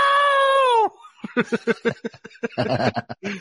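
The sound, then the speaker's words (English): A woman lets out a loud, sustained high-pitched screech, then breaks into choppy, rapid sobbing bursts that continue for a few seconds, intense. “And that's when the screeching reaction happened.”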